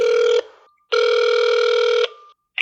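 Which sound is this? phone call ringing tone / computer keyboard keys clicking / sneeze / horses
phone call ringing tone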